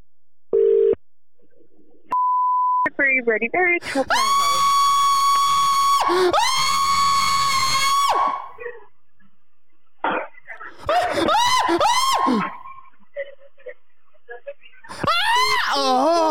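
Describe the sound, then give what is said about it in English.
A short electronic beep, then a person lets out a loud, sustained scream lasting several seconds, followed by more shrill shouted bursts and another scream at the end. “They could be angry at me for screaming.”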